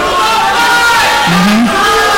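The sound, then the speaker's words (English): A crowd of voices shouts "Rudy was offsides" together in one loud, sustained burst lasting a couple of seconds, about the movie Rudy, with many overlapping pitches blending into a dense roar. “So, what everyone just yelled, Rudy was offsides.”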